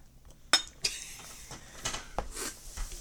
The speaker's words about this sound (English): More backseat beer pouring. You're giving me less beer. I will not stand for this.